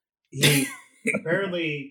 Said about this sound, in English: Did he cough Was he trying to blow the coronavirus away?